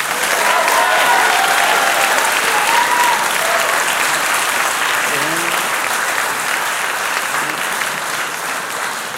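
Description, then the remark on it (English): A crowd applauds the panelists at the close of a fintech discussion, a dense, loud wash of clapping that holds strong for several seconds with only a slight fade near the end, faint cheers or voices mixed in. “A big round of applause for the panelists, everybody.”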